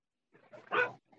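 A dog gives a short burst of barking, a couple of quick yips building into one louder bark, then a faint trailing yap.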